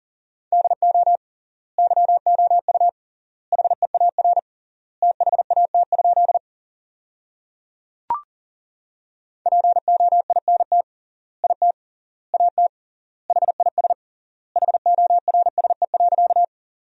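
Rapid Morse code practice tones at 40 words per minute with triple word spacing, sending sentences built from the 300 most common words: a single steady mid-pitched beep keyed quickly on and off in clustered bursts, separated by short silent gaps, with one brief click partway through. No voices.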